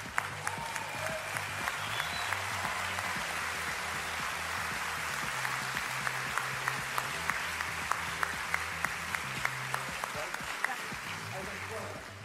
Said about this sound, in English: Okay, you guys, congratulations to the class of 22. Can we stand up and give them one more round of applause?